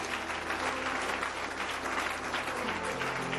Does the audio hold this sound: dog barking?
no